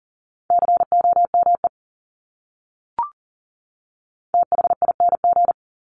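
Fast Morse code beeps sent at 40 words per minute at a steady mid pitch, keyed in two quick bursts of dots and dashes, separated by a pause with a single soft click between them.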